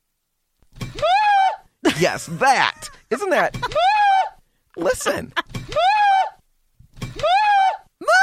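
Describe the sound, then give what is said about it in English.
A sudden clattering bump as a tea falls over is followed by a string of loud, high-pitched screams, each rising and holding before breaking off, with short gaps and a few spoken words between them. “You'll hear the clunk of the tea falling over, and then me. That is me screaming.”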